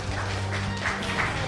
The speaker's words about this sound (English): Come on, where's the applause? Woo! Woo!